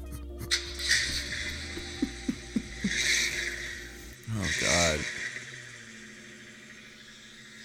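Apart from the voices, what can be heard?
engine revving sound effect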